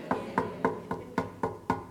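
Seven quick, evenly spaced knocks on a door, firm, each a short hollow thud in a steady rhythm with no voices.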